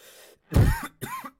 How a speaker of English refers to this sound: I coughed. It ruined it.